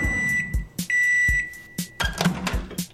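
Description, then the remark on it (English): A microwave oven beeps with steady, high-pitched electronic tones held for about a second each, broken up by a series of sharp clicks and thumps. No one speaks. “Let's pop open the microwave and find some leftovers here.”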